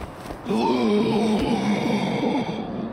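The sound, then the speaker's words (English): A loud, drawn-out heaving gasp for air by a man after choking, strained and wavering in pitch for about two seconds, with no words spoken. “He heaved in a mighty gasp of air.”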